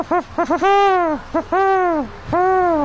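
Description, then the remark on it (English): A person imitates a great horned owl, voicing a few quick clipped hoots followed by long, drawn-out hooting calls, fairly loud with no other sounds around. “Like, there's the great horned owl that goes...”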